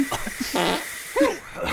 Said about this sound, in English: Gosh, someone's really cranking up the fart machine out of that special gift.